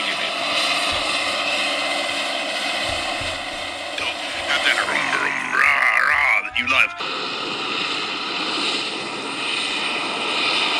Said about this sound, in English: It's tillage time here in Western Kentucky, and this video comes to you from the Green River Flats, where a John Deere 9510R four-wheel drive tractor and Kuhn Krause 4850 Dominator are working on next year's seed bed.